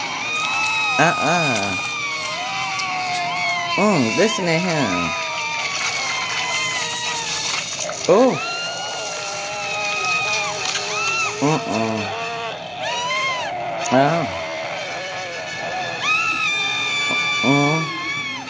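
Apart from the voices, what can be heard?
screaming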